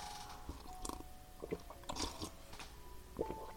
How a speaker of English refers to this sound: Let me sip my tea real quick.